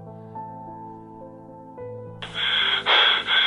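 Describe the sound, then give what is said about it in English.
Heavy, gusty breathing: two or three loud, rough exhales follow a quieter stretch of low, steady humming tones, with no talking. “Here comes the heavy breathing, I can tell.”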